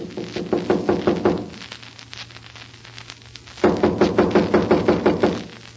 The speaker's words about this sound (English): Then somebody must be inside. I'll knock and find out.